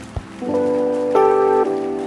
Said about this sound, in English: Clap your hands for everything, everyone, everybody, every blessing. Let your hand clap be louder. Let it be louder.